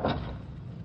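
An unlocked wooden back door swings open with a short knock of the latch, followed by a low, hollow rumble that fades over the next moment. No voices are heard.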